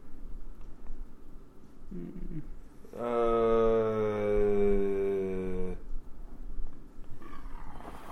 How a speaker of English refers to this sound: That was quite a burp. Yeah. That's our deaf listeners. Ooh, man. Well, because not only did I open another Coors Light, I also have a ginger ale. Double the carbonation.